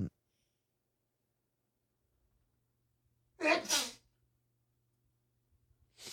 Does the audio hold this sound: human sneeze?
yes